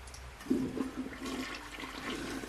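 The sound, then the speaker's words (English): A plugged toilet flushes with a gerbil stuck midway down, a loud gurgling rush at the start, then water keeps swirling and rising in a steady, bubbly churn, with no one speaking. “He's stuck midway down, and the water is coming up because I think it's plugged.”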